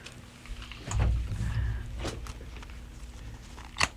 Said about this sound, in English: There's a door closing.